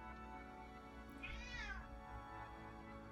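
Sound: cat meowing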